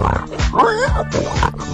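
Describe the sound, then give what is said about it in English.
A pig oinks and grunts, giving a quick series of three or so short, throaty snorts in a steady rhythm, fairly loud with no talking over it. “A. Pig.”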